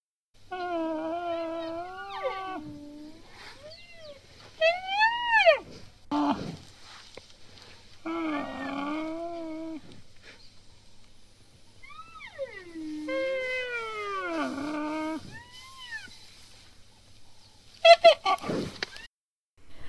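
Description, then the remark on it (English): White rhino calling in a series of high-pitched, squeaky whines with rising and falling pitch, several drawn-out calls separated by short pauses, fairly loud with no talking. “So white rhino are actually quite vocal, but they have the sweetest communications, and we'll play you a clip of it here.”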